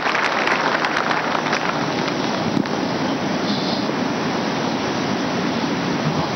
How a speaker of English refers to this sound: Thank you. Clap for him. Thank you.